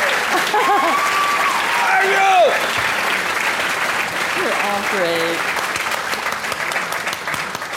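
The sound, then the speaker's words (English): Sustained audience applause for an evening's panelists before a question and answer session, a dense steady patter of clapping with a few voices calling and cheering over it, tapering slightly toward the end. “We are just about to jump into our question and answer session, but first, a round of applause for our fabulous panelists tonight.”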